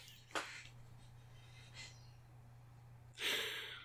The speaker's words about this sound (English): I just want to tell you all, as I'm telling you about the haunted room that I'm currently sitting in, all of a sudden there's heavy breathing at the door, and it just scared the crap out of me. But it's just the bulldog